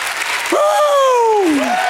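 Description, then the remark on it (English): An audience claps steadily in praise of God while one voice lets out a long, loud shout of praise that slides downward in pitch, rising above the dense applause. “Give God a hand clap and a shout of praise.”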